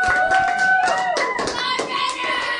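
An audience claps steadily for a couple of seconds for a speaker who has just finished talking, a dense patter of many hands, with a few raised voices or whoops ringing out over the applause.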